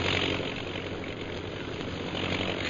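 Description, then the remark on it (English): A low-flying propeller bombing plane, one of ten, drones steadily and loudly overhead, a continuous buzzing roar that holds constant for the whole stretch with no voices. “That plane's flying pretty low.”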